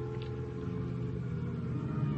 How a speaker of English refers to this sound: Then I hear a car outside. There's light enough through the window to tell me it's Lieutenant Hama.